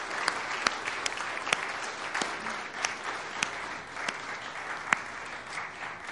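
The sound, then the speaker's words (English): Sustained standing ovation from a large church audience at the end of a service, a dense wash of clapping with scattered sharper claps popping out, steady in volume throughout with no talking over it. “Let's give one more round of applause. Standing ovation for them.”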